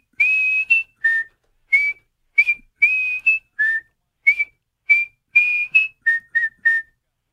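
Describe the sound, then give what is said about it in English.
A person whistles a quick, lively tune of about a dozen short, clear notes hopping between two or three pitches, fairly loud, with no talking. “I need a whistle. You got to give me a whistle before.”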